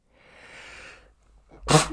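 A long, airy intake of breath, a brief pause, then one sharp, loud sneeze. No one speaks.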